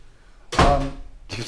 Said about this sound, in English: Let's shut that door real quick.